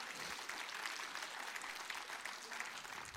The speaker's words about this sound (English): Applaud and I'll move on a little bit.